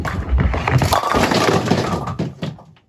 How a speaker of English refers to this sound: That is the sound bowlers aim for, a nice clean crashing of the pins. But if you're a super avid bowler, you might be able to hear something a little different there. Those pins were attached to strings.